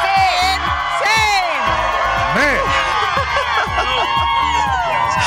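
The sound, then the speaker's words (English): A large studio crowd cheers and whoops loudly and continuously, with overlapping shouts and rising yells throughout. “Look at this crowd. This crowd is insane.”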